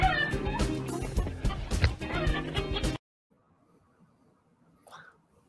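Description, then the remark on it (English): Several agitated chickens, newly added to the flock, cluck and squawk loudly in a dense, overlapping clamor after a lynx got at them, then it cuts to near silence with one faint squawk. “See how upset you made everyone? There's two. That's two of our new chickens.”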